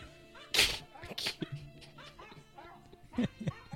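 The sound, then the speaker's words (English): A recording of a singing dog played in the background, letting out a string of wavering, sing-song howls and yelps with a few sharp louder bursts over a faint background. “What I'm going to do here, we are going to play the singing dog in the background while you talk about the fully grown dog list.”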